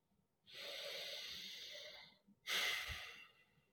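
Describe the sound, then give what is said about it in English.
A single deep breath: a long, airy inhale of about a second and a half, a short pause, then a forceful, rushing exhale. No talking. “So with that, friends, let's get a little breath.”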